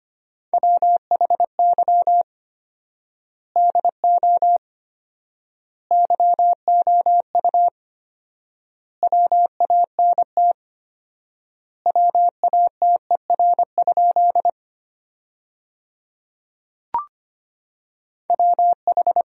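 Morse code tones sent at 25 wpm with 4x word spacing, sending sentences made from the top 200 words: a steady mid-pitched beep keyed in rapid dots and dashes, grouped into words separated by long pauses, with one brief click near the end.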